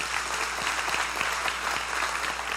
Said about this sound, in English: If you believe that, give God a hand clap this day.